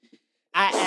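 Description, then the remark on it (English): A sudden, loud sneeze bursts out after a brief near-silence with a couple of faint murmurs, a harsh voiced blast that holds to the end. “Bless you.”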